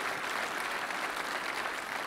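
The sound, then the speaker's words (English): A church audience applauds a person for innovation in a steady, dense wash of clapping that holds an even loudness throughout, with no voices rising above it. “And so would you guys give Chris a big round of applause for innovation?”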